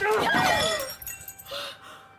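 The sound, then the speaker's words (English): Glass figurines from a glass menagerie collection shatter in a loud crash with ringing, tinkling fragments that scatter and settle over the next second, followed by a brief vocal gasp. “My glass menagerie.”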